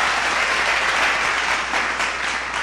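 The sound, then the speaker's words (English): A live studio audience applauds steadily, a dense wash of many hands clapping at once, loud, sustained for the full few seconds with no one speaking over it. “You got to talk over the live studio audience claps.”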